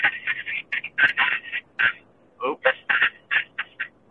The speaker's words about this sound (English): Oops. Did you hear that? No, I didn't. What was that? That was my my maps yelling at me about a wreck coming up.